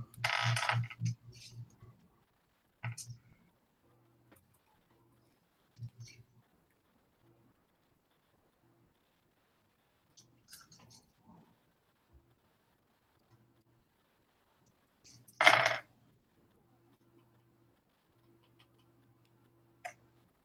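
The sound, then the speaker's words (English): Dice rolled for an attack in a tabletop game clatter onto a hard surface in two main bursts, a rattling spill near the start and another sharp tumble later, with a few faint clicks between and quiet gaps of near silence. “Since I can find all the dice that I need.”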